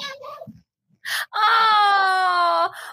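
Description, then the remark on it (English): A cat lets out one long, drawn-out meow that holds a steady, wailing pitch before dipping slightly at the end, preceded by a couple of short, softer sounds. “Hey, I know you guys sometimes get annoyed at my cat coming on, but, you know, I thought maybe, you know, you'd be okay if this guy came on.”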